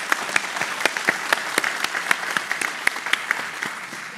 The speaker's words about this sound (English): Yes, that deserves applause.